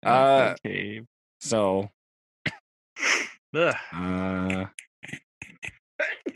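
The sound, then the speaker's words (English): A sharp, breathy sneeze bursts out among several loud voiced groans and grunts, followed by a scatter of short clicks and quick vocal noises. “Bless you. Thank you.”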